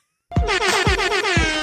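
A loud, brassy Jamaican air horn sound effect, played as entrance music, blares abruptly after a brief silence, pulsing in quick repeated blasts in the style of a reggae dancehall horn, with no talking over it.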